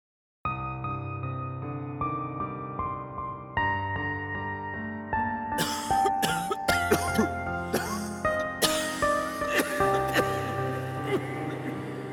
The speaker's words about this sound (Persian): صدای سرفه های خشک و بوی تند الکل